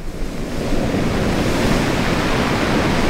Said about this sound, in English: When the wind picks up at Roy Carpenter's beach, it pushes waves against the quarter-mile stretch of sand.